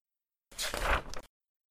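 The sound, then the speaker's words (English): The doors of a Bentley car shut in quick succession, a brief burst of heavy thuds and rattling over less than a second, fairly loud, with no voices. “They don't so much drive back as close the doors of the Bentley and Tedfield and then reopen them, with the Bentley parked in its usual appropriated loading zone spot across from the bookshop.”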